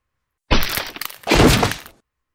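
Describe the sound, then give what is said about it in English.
A heavy, beef-sized shoulder rams into a closet door with a loud splintering crack, followed by a second rough burst of wood creaking and giving way, forceful with no voices. “She drew back her upper body, swayed back on her feet, then thrust forward, slamming one side of beef-sized shoulder into the door.”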